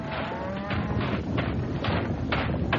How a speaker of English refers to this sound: The ground beneath me was shaking now, dancing in a crazy rhythm to the pawing of the raging hooves.